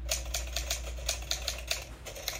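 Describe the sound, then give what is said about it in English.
Rapid typewriter keys clacking in a steady, slightly uneven rhythm, about a dozen crisp strikes over a couple of seconds, moderately loud with a low hum underneath and no voices. “Oh, it's a sound effect of a typewriter I found.”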